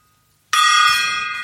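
A small gong is struck once after a brief silence, giving a sharp attack and a bright, shimmering metallic ring that lingers and slowly fades. No voices are heard.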